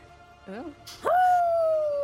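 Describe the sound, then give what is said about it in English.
After a brief vocal yip, a loud human howl swoops upward and holds steady to the end, people imitating a wolf. “Literally, every time he transforms, all of us have to howl.”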